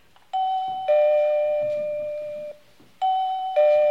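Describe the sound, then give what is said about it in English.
A two-tone doorbell chimes ding-dong, high note then lower, rings clearly, then repeats the same pair a second time with ringing tails between. “Barbara, doorbell.”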